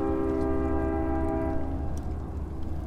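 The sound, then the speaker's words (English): A small passenger train rumbles past with a steady, sustained horn blast that fades out midway, leaving a low rolling rumble of the cars. No talking. “Little passenger train going by.”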